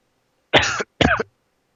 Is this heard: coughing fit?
yes